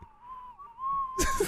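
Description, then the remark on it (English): Someone whistles a spooky tune: a single long, thin whistled note wavers slightly in pitch, then is cut off by a sudden loud, noisy burst near the end. No one speaks. “Sounds like a butthole whistling.”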